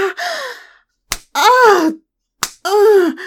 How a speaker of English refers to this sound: I've never had anyone put me over their knee and slap me.